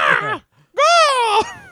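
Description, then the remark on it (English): A voice imitates the shriek of a bird's head pulled out of a Transformers toy truck, with two loud, strained squawks: a short harsh cry, a brief pause, then a longer high-pitched screech that holds steady before cutting off. “That's the driver of the week, is my inability to not imagine like flipping up a truck lid and pulling out a bird's head. That shrieks at you as you do.”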